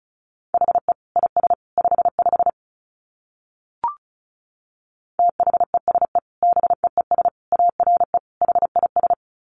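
Rapid Morse code at about 35 words per minute: a single steady mid-pitched tone keyed into quick dots and dashes, in two runs separated by a short pause and a brief click.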